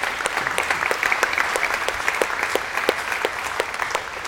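A church audience applauds steadily, a dense patter of many hands clapping together, fairly loud and even throughout with no voices over it.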